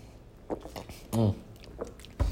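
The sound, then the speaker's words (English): Someone takes a drink of water: soft wet mouth clicks, then one louder throaty gulp in the middle, a couple more small swallowing sounds, and a low thump at the end. “Get a drink of water here, man.”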